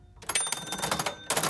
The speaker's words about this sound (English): were walking the beat at 2 a.m., crossing the street kitty-corner of 11th and Main from the Owyhee Hotel, and they passed the Central Meat Market on the ground floor of the Alaska Building when the officers heard a cash register ring open.